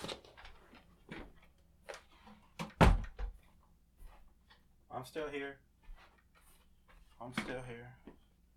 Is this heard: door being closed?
yes